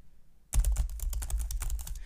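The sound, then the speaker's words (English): Rapid, steady clicking of keys on a small keyboard begins abruptly after a brief quiet moment, continuing as a busy patter of typing with no voices. “They just are magicians with those little keyboards that they got going.”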